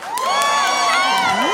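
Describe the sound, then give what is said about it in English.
A crowd cheers loudly and steadily in answer to a call to make some noise if they have a burner account, with many high-pitched whoops and yells overlapping in a dense roar that holds for the whole moment. “Make some noise if y'all have a burner account.”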